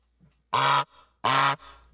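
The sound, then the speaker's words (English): A voice does two loud, nasal honks imitating the Goose Island honk during a Goose Island Beer Company ad read, each blast lasting about a third of a second with a short pause between, with no other talk. “he called the Goose Island honk honk a quack, quack.”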